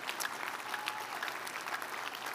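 An audience at a church service claps their hands to thank the Lord in steady, dense applause, many overlapping claps blending into a continuous wash of sound at moderate volume, with no speech over it.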